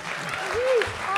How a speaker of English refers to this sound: Guys, a big round of applause for Mr. Danny Pudi.